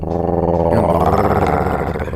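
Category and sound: animal, pug dog snoring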